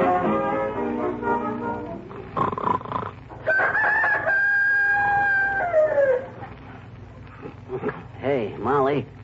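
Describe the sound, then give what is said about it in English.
A person imitates a rooster's crow: one long, loud, drawn-out call that falls in pitch at the end, with other voiced sounds and chatter around it. “I just heard a rooster crowing.”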